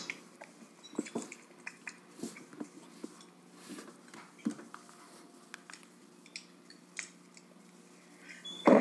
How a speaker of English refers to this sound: I want to hear the nature sounds of Ontario. I'll bring my phone close to the fire for the crackle.